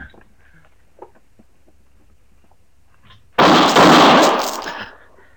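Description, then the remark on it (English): After a few seconds of faint, low rumbling, a single loud gunshot cracks out, its harsh roar lingering and fading over about a second and a half. “How did you know he was going to shoot, Matt?”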